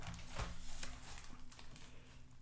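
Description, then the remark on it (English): Soft papery rustling and crinkling as thin Bible pages are turned to Deuteronomy chapter 17, with a few light flicks and a faint steady hum underneath; no one speaks. “Turning the pages here.”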